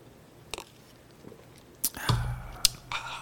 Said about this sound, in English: Believe it or not, we are drinking water today.